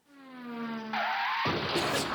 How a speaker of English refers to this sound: Today is car crash of the week.